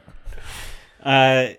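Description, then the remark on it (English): A person takes a quick breathy inhale, then lets out a loud, nasal, wavering bleat imitating a goat, held for about half a second. “You could maybe goat noise.”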